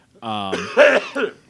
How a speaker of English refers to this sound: bless you. No, I coughed. Oh, excuse you.